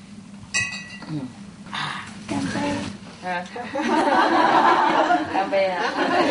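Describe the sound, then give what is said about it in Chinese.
A bright glass clink rings out near the start, followed by overlapping voices, chuckles and lively group chatter that grows louder, as a table of people share a farewell toast wishing a safe journey. “干杯！一路顺风啊！”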